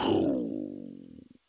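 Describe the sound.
A lion's roar opens loud and harmonically rich, then slides lower and breaks into a series of quickening, fading grunts before stopping, with no talking.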